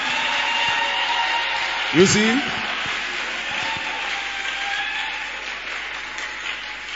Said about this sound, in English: Wonderful. Wonderful. Oh, please clap for her.